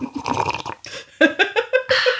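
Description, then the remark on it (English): A noisy slurp of hot tea, followed by a few quick gulping, throaty swallows in an uneven rhythm. No one speaks. “Excuse me while I just slurp my tea right now to prevent Dracula.”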